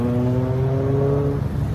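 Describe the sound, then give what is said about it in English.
A car engine hums steadily, its low droning tone shifting slightly in pitch as the vehicle moves along the street, with no voices present. “A lot of traffic out here today.”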